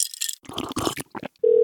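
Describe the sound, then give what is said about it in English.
Quick clattering and tapping noises, then a steady electronic phone dialing tone as a FaceTime call is placed, starting abruptly and holding at an even pitch and loudness until the end. “I am going to call your phone.”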